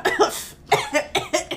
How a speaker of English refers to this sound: The cough is a mere nothing. It will not kill me. I shall not die of a cough.